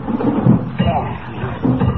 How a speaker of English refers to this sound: Ripping out this iron door ought to be easy.